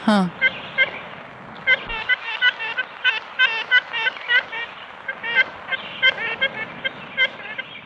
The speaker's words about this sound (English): The ivory bill had this really distinctive trumpet-like call, the toot-toot. That, you know, at one point had been so pervasive in some of these southern states, its range stretched all the way from East Texas to North Carolina